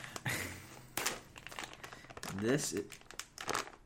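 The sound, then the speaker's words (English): Irregular crinkling of a plastic package wrapper being pulled and torn open, crackling in quick bursts for several seconds, with a voice briefly sounding partway through. “So the tear was not low enough on the package for me to actually be able to open it.”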